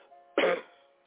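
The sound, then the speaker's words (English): A woman lets out a single sharp, forceful cough from her gut, loud and abrupt, then it fades quickly into a quiet, faintly humming background. “Keep coughing.”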